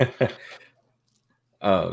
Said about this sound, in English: Got the hiccups all of a sudden.